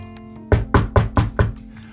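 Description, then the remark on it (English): Five firm knocks on a room door by a maintenance supervisor on a rainy night, in a quick, even rhythm and fairly loud, with a low hollow thud to each strike and no voices around them. “38 minutes later, a sleepy maintenance supervisor, obviously not happy to be rousted from his bed on a rainy night, knocked at our door.”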